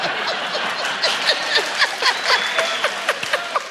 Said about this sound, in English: Round of applause if you chose to come here and left somewhere hectic. There you go. Just curious. Wait, just to be fair, round of applause if you're trapped here by someone.